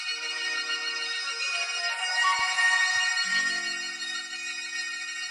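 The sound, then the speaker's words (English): A soft, calming baby lullaby played at nap time, with bright, chiming electronic tones and a gliding little whistle-like sweep at the start, playing steadily at moderate volume with no voices. “Like you put it in there and the song starts with this like little whistle, like, actually, go ahead.”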